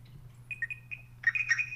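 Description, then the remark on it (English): A smartwatch walkie-talkie call tone as a man calls his wife: a few quick, high electronic blips followed by a brighter cluster of chiming notes, fairly soft, with a low steady hum underneath and no talking. “Get your watch so we can walkie-talkie.”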